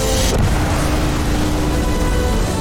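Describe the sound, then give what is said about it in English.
A spaceship's main engines ignite for departure, a loud, steady, deep rumble with a broad hiss on top, sustained and unbroken for the whole few seconds with no voices. “Main engines go. Ignition.”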